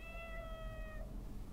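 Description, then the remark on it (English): A single drawn-out meow from a barn cat, steady and fairly clear, lasting about a second before fading out, with a low rumbling background noise underneath and no talking. “How'd that cat get out?”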